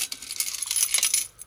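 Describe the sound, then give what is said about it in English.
Six coins of change spill and clatter together in a quick jangling cascade, bright metallic clinks tumbling over each other for a second or so, fairly loud, with no voices. “I'll need the store security to help me with my purse because I got 6 extra coins in it.”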